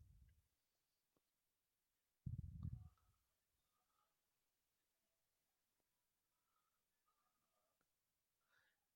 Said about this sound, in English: And he just farted.